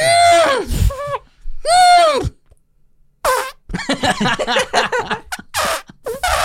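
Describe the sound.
A voice mimics a baby elephant with two loud, brassy trumpeting bursts, each wavering in pitch, separated by a short pause, followed by lively chatter and laughter.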